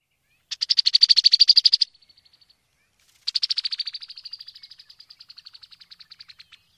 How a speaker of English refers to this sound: Like many birds in this family, females have a unique song, which is a hard, flat rattle. Here's what that sounds like.